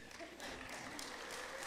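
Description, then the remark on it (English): Scattered, fairly soft clapping from a Sunday gathering in East Taylorsville, a loose patter of hands with a few sharper claps standing out, continuing steadily without building into full applause. “I know some of y'all wanted to clap.”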